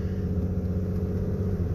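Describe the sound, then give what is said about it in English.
A steady low engine rumble and road hum fill the cabin, continuous and moderately loud, with no voices: the muffled drone of driving in traffic from inside a car, on the way to buy more primer paint. “Sorry guys, I'm in traffic once again here.”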